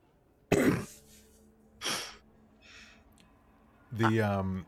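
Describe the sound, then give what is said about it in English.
A man who is rowing gives two sharp coughs and a fainter third, ending in a longer strained, throaty sound as he sputters and almost chokes on fog, against a quiet background. “just coughs and like almost chokes on some of the fog.”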